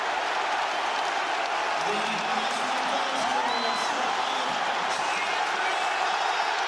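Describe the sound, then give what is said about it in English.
A football crowd roars after a goal by Henry, a loud, steady wall of cheering with scattered shouts and whoops rising through it, sustained for the whole stretch without letting up. “But it's the reaction of him and that, the crowd.”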